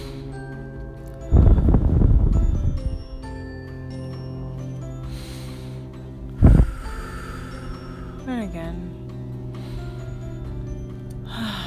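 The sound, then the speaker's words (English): A long, loud deep breath, then a shorter sharp one a few seconds later, over steady soft background music, with a brief spoken phrase between them. “So I usually would tap on my top of my chest and take a few deep breaths.”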